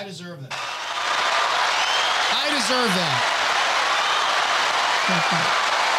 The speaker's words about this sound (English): I can't hear it, but I think that was applause, right? It was.